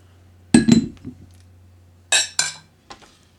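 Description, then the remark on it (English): Glasses clink together in a toast: a quick pair of bright, ringing chinks, a short pause, then two more sharp clinks and a fainter final tap over a low steady hum. “Let's ding our glasses.”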